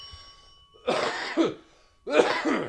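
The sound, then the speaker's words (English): Two loud, harsh coughs in a studio, each a raspy burst lasting about half a second, separated by a short pause, after a faint fading ring. “It's okay, everybody. I'm not dying. No, we don't even have a cough button.”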